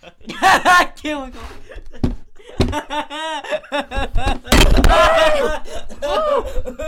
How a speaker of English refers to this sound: Oh, the plate broke. The mic just fell and hit a plate and it shattered. It shattered in half.